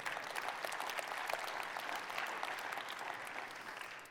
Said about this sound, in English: That's a halfway applause.